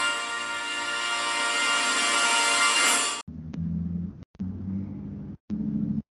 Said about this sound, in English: Start off with the car driving away.